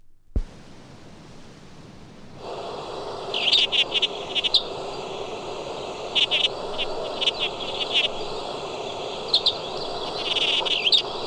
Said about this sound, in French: Dans la nature. Fauvette babillarde.